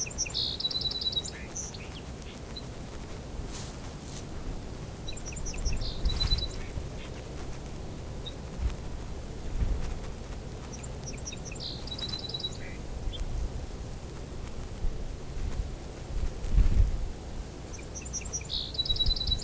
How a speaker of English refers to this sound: bit of back and forth between two song sparrows here. These two male song sparrows are probably on migration right now.